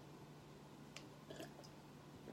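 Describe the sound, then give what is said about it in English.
A few soft, wet sips of water from a glass, quiet, spaced unevenly over a low steady hum, with no one talking. “I'm drinking water today.”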